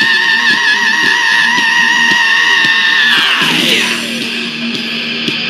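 A long, high, wavering scream rides over a steady, mellow phased guitar riff, then slides downward in pitch near the end as the guitar carries on beneath.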